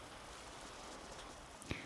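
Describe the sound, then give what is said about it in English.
Light drizzle starting to fall hisses softly and steadily, a faint, even wash of fine rain with one brief sharper tap near the end. No voices. “I think I've arrived, I write in my notebook as the drizzle starts to come.”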